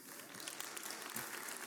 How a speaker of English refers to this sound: And so really God, please, give Him a clap of praise.